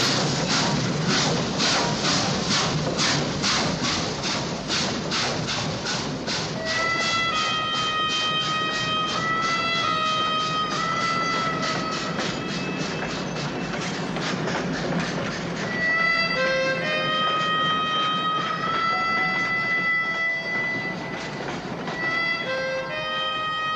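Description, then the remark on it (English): A train in a scene from the film Once Upon a Time in the West rolls past, its wheels clacking in a steady rhythm over the rails, joined by shrill metallic squeals and whines as the cars keep passing. No one speaks. “And the train goes by, yeah, and then you get to see Charles Bronson.”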